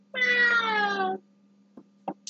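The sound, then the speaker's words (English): A voice imitates a cat's meow with one long, drawn-out, wavering cry that slides downward in pitch, followed by a few short, soft bursts of sound. “So he meowed, but it was more like,”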